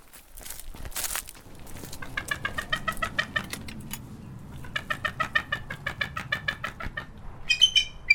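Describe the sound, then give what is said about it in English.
A female bald eagle gives bursts of high, thin chattering calls, rapid stuttering notes repeated in several runs, clear, with a soft rustling background and no voices. “So there's a bit of commotion here, and I recognize the participants. This is a bald eagle?”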